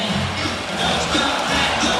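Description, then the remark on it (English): A large basketball arena crowd cheers loudly and steadily as Chris Golding (CG43) commits a foul late in a United game and the crowd waves goodbye to him, a dense wall of shouts and applause-like roar that swells slightly toward the end, with no individual voices standing out. “The crowd will love this as they wave goodbye to CG43.”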